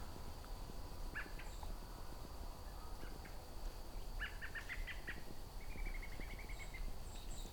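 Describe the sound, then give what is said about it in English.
A flock of white-throated sparrows at sunset gives short, high, metallic pink calls at irregular intervals, some in quick clusters, over a steady rushing outdoor background with no one speaking. “Very easy to find a flock of white-throated sparrows if they're nearby you at sunset, because that's the sound they'd be making.”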